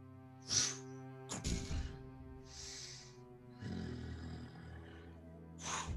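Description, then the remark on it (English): A voice imitates a creature snarling up close: harsh, growly breaths and rasping snorts in several bursts over a few seconds, with a throaty rumble in the middle, no words spoken. “Okay, when it gets close, I can hear it snarling, right?”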